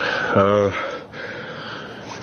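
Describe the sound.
Heavy, breathy exhaling, a continuous rasping rush of air, with a brief voiced gasp near the start.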